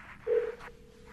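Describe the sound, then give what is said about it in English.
A steady electronic ringing tone from an outgoing phone call to Steve McKenna, placed live on air on the Zane Lamprey Show. It starts with a louder burst, then holds as one continuous hum over a faint background, with no one speaking. “It's ringing.”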